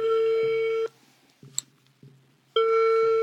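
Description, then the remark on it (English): A phone's ringback tone purrs through the line as a woman calls a man from a hotel in Mexico City: two loud, steady buzzy rings with a gap of near-silence between them, broken only by faint clicks, heard alone with no talking. “one night at a hotel in Mexico City, she decides, I'm just going to try to call him.”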